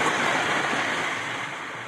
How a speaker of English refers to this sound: Normally, it's so quiet because there's nothing else happening out there, you know, but when the ice is moving and it's a windy day, it's, you know, there's a background din of crunching going on. This is actually what it can sound like.